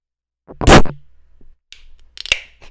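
A beer can tab, stiff and hard to crack, cracks open with a loud, sharp snap followed by a fizzing hiss, then a second crisp pop and brief fizz; no one speaks.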